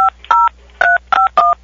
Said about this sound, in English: I was trying to call a business, which was an Applebee's, and before the phone rang, an employee picked up and started dialing the phone. So after he finished dialing, I said hello just to see where the conversation would go.